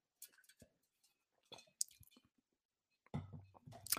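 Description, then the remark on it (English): Crunching and clicking of a piece of ice being chewed in the mouth, with brief wet squishy mouth sounds in separate bursts and a longer, louder crunch near the end. “As I got a piece of ice in my mouth, that's great.”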